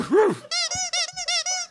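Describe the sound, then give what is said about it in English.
A dog gives a rising-and-falling whine, then five quick, evenly spaced high yips in a row, fairly loud, with no talking. “A dog beat you to it.”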